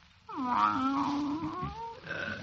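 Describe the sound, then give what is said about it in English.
A voice imitates a Persian cat's meow with one long, drawn-out wavering call, then a shorter second meow. Both are fairly loud, with no talking over them. “I know what it is. It's coming over me. That Persian cat feeling.”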